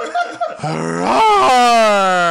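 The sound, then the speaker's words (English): A voice imitates a lion's roar: after a couple of short breathy bursts, one long, loud, rising growl holds steady with a strained, harmonic tone for about two seconds. “And roar! This is the lion.”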